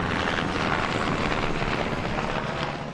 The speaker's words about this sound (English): I got a big helicopter flying over. That is a big military helicopter. Another one coming by.